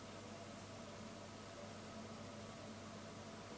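A steady, low radiator hum, a constant soft drone with a faint hiss layered over it, unchanging throughout and fairly quiet, with no voices.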